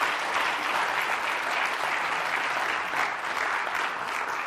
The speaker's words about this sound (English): And I think you deserve an applause y yo for pienso that. Que merecen un aplauso a ustedes.